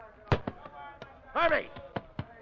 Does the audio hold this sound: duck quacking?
no